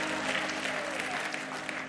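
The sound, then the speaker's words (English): An audience claps steadily, a dense wash of many hands beating together at a fairly loud, even level with no pauses and no voices rising above it. “Clap your hands and say, different is going to be good.”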